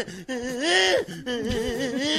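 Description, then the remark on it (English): A man's voice whimpers in two strained, wavering, high-pitched bursts, imitating someone running from a big dog and about to be bitten; the first whine rises and bends before breaking off. “When you're running from a big dog and you're about to get bitten, you sound like this.”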